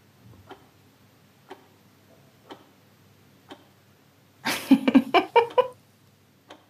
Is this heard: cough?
no